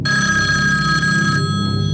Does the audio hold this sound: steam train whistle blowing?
no